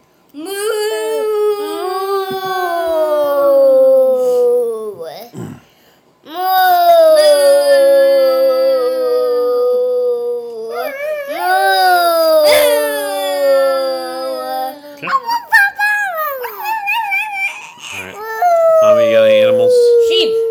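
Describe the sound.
A person imitates a cow with several long, drawn-out moos, each sliding in pitch, voiced loudly with brief pauses between them.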